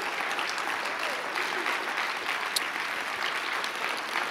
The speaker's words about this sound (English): Give Jesus an even greater hand clap for all he's done tonight.